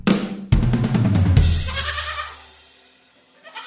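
A single loud, wavering goat bleat lasts about two seconds with a shaky, nasal quaver, then fades into quiet, with a faint stir of noise at the very end.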